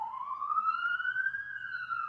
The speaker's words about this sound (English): The sirens are getting louder because they can sense the bullshit is approaching.